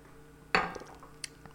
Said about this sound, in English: And I got to take a sip of this beer before I lose the head completely.